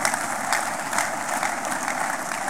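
A church audience claps in praise steadily, a dense continuous patter of many hands at a fairly loud, even level with no voices, the crackling texture holding unbroken throughout.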